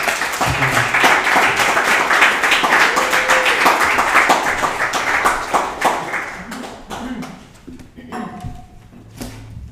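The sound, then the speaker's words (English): A crowd applauds loudly for a speaker just introduced at a morning event, with dense, steady clapping for several seconds, then the clapping thins out and tapers to scattered claps near the end. “So I'm excited Let's give a round of applause, please.”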